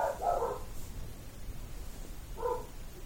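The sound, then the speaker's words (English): A dog barks twice, a short cluster of yips at the start and a single bark near the end, separated by a quiet pause over a low background rumble. “Just barks at you.”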